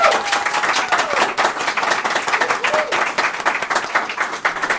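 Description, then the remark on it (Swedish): An audience applauds to vote for goalball as the sport they most want to see, in a dense, steady burst of many hands clapping, loud and sustained throughout with a faint murmur of voices underneath. “Applåder nu!”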